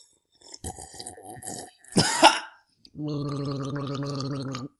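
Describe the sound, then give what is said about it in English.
Someone takes a drink of water: wet gulping and swallowing, a sharp noisy gasp, then a long buzzy gurgle like gargling that lasts over a second. No one speaks. “sometimes we just pause in the intro and take a drink of water.”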